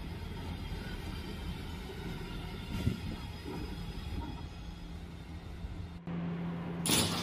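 An R211 subway train running as a Brooklyn-bound F local rolls steadily along the tracks between Delancey Street-Essex Street and East Broadway, a loud continuous rumble with a droning electric hum and clatter, shifting in tone near the end. No one speaks.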